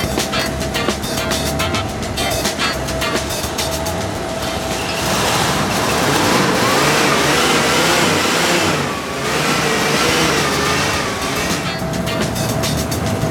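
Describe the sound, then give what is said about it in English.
A car engine turns over and settles into a steady rumble, then revs up loudly several times with rising and falling pitch, with no talking. “Good engine. Runs perfect, didn't I tell you?”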